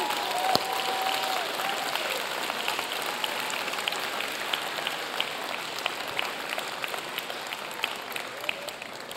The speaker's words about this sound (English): all right, kids, let's clap for you. Let's send you out.